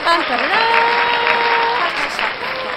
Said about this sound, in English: Applause, cheering.